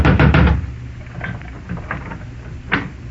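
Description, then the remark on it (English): A quick burst of three or four loud knocks on the wooden front door of the house next door, reached from the street up its steps, followed by quieter scattered thuds and one more sharp knock near the end. “There was one answer to that, so I went out in the street and up the steps of the house next door and knocked, good and loud.”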